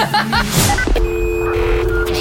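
A quick run of electronic telephone dialing tones as a call is placed, each a short steady pitched beep, clear over a busy background with some overlapping voices.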